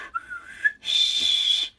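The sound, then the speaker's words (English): Someone mimics a police whistle with their mouth: a short, thin rising whistled tone, then a longer, airy, hissing whistle blast, fairly loud, with no talking. “we're going to send over a police officer with a whistle. Shh, shh. I can't really whistle.”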